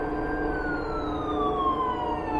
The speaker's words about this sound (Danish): Hylende sirener gennemskar stilheden i kvarteret den morgen, da politi og redningsfolk mødte talstærkt op.